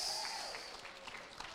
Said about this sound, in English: Come on, clap for Jesus. Give Him praise. Come on, give Him praise.